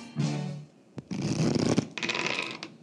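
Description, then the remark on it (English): A deck of Takinoko game cards is shuffled in a few quick, crisp riffling bursts of papery flutter, with a brief voiced sound at the very start. “Did you already shuffle all these? I think I did.”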